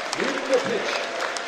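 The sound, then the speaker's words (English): A large stadium crowd in the Tyne and Wear stand applauds steadily, a dense wash of clapping, as the player Coyote is substituted off for Dominic Tia during a football match, while a man's voice talks over it. “We are going to see Dominic Tia come on for Coyote, and Coyote is going to get a round of applause here from the Tyne and Wear stand that he rightly deserves.”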